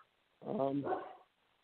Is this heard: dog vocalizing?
yes